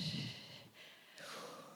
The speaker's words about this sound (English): Some really big, deep breaths. Okay, I want everyone to breathe with me, okay, because you're not breathing. Okay. Big breaths, right from the diaphragm and out.